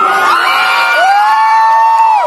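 A loud crowd at a live show in a club erupts in shouts and cheers, with several voices yelling and whooping over one another in a sustained, rowdy burst.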